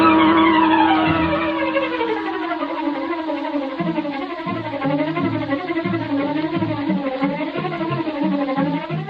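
In a Green Hornet radio drama, Bleeker's car roars along as it swings into the street and turns toward Schaefer's parking lot, its tires screeching loudly and steadily, the squeal wavering up and down over a throbbing engine for several seconds, with no voices.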